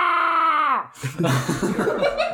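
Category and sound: human body sound, person screaming on cue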